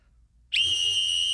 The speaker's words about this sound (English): All right, and now I'm going to blow the world's loudest whistle. Can you step away a little bit?